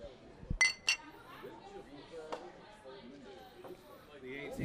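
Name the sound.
beer glasses clinking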